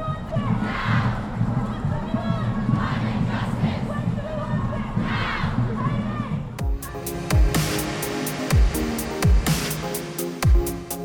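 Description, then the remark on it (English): A crowd of protesters roars and shouts together in a dense, surging wall of voices for several seconds, then rhythmic music with heavy beats cuts in abruptly. “You're starting to sound like you're about to join these protesters.”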